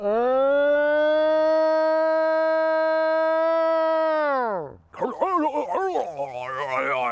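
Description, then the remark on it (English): A recorded scream attributed to a yowie, taken from YouTube audio of yowie sightings: a long, steady, high-pitched wail held for several seconds, sliding down abruptly, then breaking into loud, wavering, warbling cries. “And there's audio as well of the screams and stuff.”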